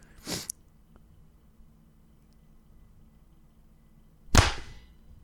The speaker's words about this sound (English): Perfect. Now we're synced up. Why? Oh, he just starts laughing. He just finds the clap so fucking funny. Clapping is fun.